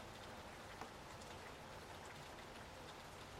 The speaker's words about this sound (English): She even lowered her hood so she could hear better, the rain beating on her ponytail and across her freckled nose.